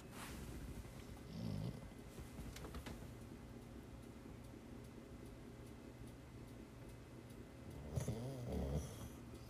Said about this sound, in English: Red has stayed over, and I don't know if you can hear him. Yeah, he's snoring. Can you hear him?